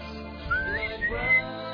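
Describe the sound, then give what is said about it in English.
A person whistles a short, wavering melody for about a second, moderately loud, along with a song playing faintly underneath on the radio. “Whistling along with it.”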